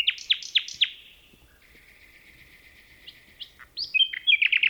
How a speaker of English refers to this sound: We leave you this week with a few notes from a bird with a much sweeter song than the magpie. Phil Riddett recorded these 2 nightingales in a forest near Kent, England.